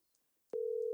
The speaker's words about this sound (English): The phone is ringing.